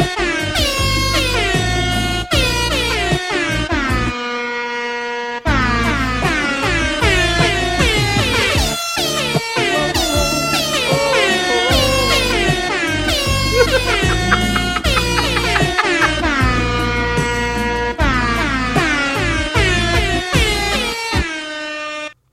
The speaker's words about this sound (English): I call it careless air horn. I heard that the other day on a podcast and I almost drove off the road.